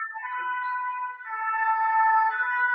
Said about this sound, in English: Sorry, we have a emergency vehicle passing and French car is not getting out of the way. It's gone now.